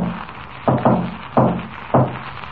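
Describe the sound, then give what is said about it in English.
Four dull knocks on the door of a gang's cave hideout in a signal pattern: two quick raps, then two more evenly spaced, over a faint low hum with no one speaking. “He's at the door.”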